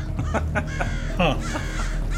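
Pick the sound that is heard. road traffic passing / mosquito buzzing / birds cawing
birds cawing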